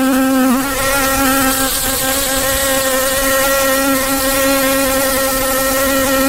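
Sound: buzzing insect sound effect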